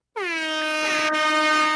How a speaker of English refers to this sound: I was trying to hit my air horn here. Here it is.